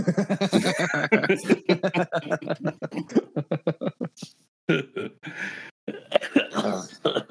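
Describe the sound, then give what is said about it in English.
Loud coughing: a rapid run of short hacking bursts, then a pause and several harsh, raspy, drawn-out coughs, with no clear words spoken. “I did say that his cough might come back after the jokes.”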